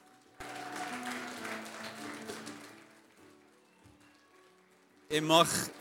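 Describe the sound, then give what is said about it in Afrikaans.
A church audience breaks into a dense burst of hand clapping for the Lord mixed with voices, gradually dying away over a few seconds, followed by a sudden loud burst with high, whistle-like tones at the end. “So, kom ons gee vir die Here sommer net 'n lekker hande klap.”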